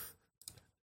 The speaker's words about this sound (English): Gesundheit.